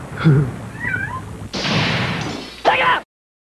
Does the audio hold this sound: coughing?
no